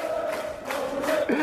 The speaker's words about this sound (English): You brought the fans make you feel all right. There you go. I hear it. This is your Arsenal supporters cheering you on.